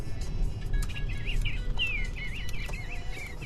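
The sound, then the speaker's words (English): A robot bird toy that turns its head and opens its bill chirps in a series of short, warbling electronic tweets that rise and fall repeatedly, over a steady low rumbling background with no talking. “And I got this little robot bird.”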